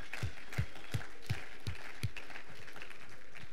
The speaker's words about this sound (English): So I'd like to just give everyone a big round of applause for that effort.